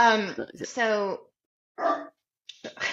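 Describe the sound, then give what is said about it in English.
A dog barks: a long, drawn-out baying howl followed by two shorter, rougher barks after brief pauses, fairly loud and with no talking over them. “We're dog friendly. Come on, Maya. I know you're upset.”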